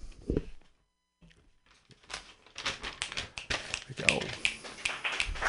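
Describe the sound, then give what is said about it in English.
A short burst of scattered clapping from a small studio audience, quiet at first then building into brisk, uneven applause for a few seconds. “Yeah, we got some claps out in the studio.”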